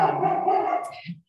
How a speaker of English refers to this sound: It's dog time. There's a dog like running down the streets.